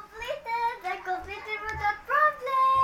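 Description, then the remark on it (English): A young boy's high-pitched voice chatters almost continuously for a few seconds, rising and falling in sing-song bursts, with no other sounds around it; he is doing math. “That's my son, so he's doing math at the moment, so you would expect him to be in and out throughout the whole recording.”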